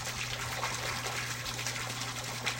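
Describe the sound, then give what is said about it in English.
Steady, continuous rush of a waterfall, broad and hissing with a low hum beneath, unbroken for the whole stretch with no voices. “Neither of us said anything, but just sat there, listening to the sound of the waterfall.”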